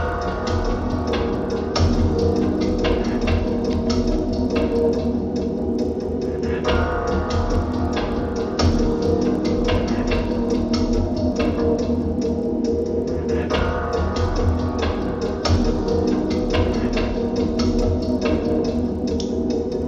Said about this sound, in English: Turn it up a little bit. Played the same chords. By itself, it's not that much, but in the track, you get that ticking sound.